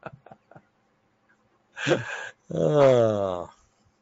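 A dog barks at someone knocking at the door: a rough, harsh bark followed by a longer, tonal, drawn-out bark-howl, preceded by a few quick soft taps.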